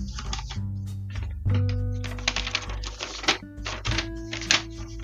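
Rustling and shuffling of paper sheets being pulled out and handled, a series of crisp irregular crackles and soft thumps over a low, steady hum.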